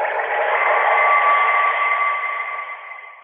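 A phone ringing underwater: a muffled, watery wash of noise with a thin, steady electronic tone held through it for about three seconds, fading slightly at the end, with no voices.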